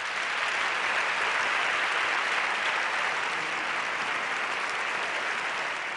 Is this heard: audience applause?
yes